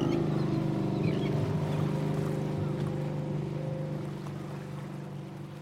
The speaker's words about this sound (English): But all I see is a flutter of a seagull, spooked by the rumbling engine of an approaching boat.